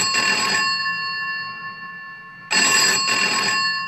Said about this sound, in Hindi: इससे पहले कि प्रिया कुछ सोच पाती उसके कमरे का लैंडफोन बजा